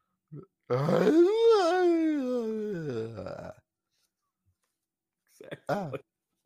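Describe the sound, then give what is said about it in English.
A voice imitates a bellowing scream from a dark forest, a scream attributed to the Big Muddy Monster in Murfreesboro: one loud, wavering wail that climbs, then slowly sinks over about three seconds, followed after a pause by a brief, rough vocal burst. “there was a sudden bellowing scream from the dark forest.”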